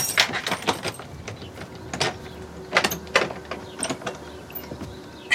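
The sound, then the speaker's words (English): A key rattles and clicks in the stuck door lock of a new home, jiggled in irregular bursts of small metallic clacks and scrapes, fairly quiet, with no voices. “It won't open for me. Give it a good shove.”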